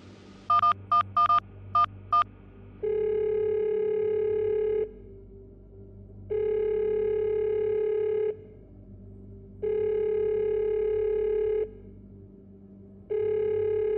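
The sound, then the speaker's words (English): A rapid burst of about seven short beeping tones as a phone number is dialed, then a steady ringback tone sounding in four long, evenly spaced rings with pauses between, no voices. “Why are you calling me?”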